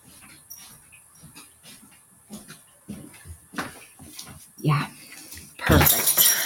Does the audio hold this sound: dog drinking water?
yes